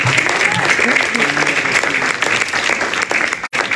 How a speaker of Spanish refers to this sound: Denle un aplauso a Jesús por eso.